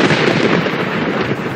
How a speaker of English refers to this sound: It starts with a lightning storm.